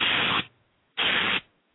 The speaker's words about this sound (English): I'm hearing some static, something crazy. Is that me? Loud? Because I don't hear anything on my end. Well, I can hear it. It sounds crazy.